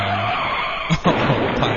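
Car tires skid loudly with a sustained screech that fills the short clip, punctuated by a couple of brief thumps near the middle, with no voices present.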